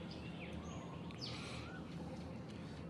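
Faint bird chirps, a few short high sweeps and tweets, rise above a steady low hum of outdoor background noise. Nobody speaks.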